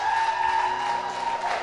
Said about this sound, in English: No, I want you to give a round of applause for that.